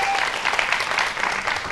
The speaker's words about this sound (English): Y'all give … one more hand clap this morning.